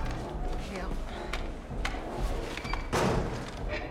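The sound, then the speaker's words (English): A drawer slides and bumps shut with a solid wooden thud, after a couple of lighter knocks and rattles, over a busy background with muffled voices. “The drawer? Guns.”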